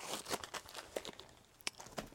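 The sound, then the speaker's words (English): Dry paper rustling and crinkling in quick irregular bursts as envelopes are shuffled and handled for a blind draw, with brief sharp tearing-like accents and no speech. “Let's just close my eyes, shuffle these envelopes about, and let's just pick one at random.”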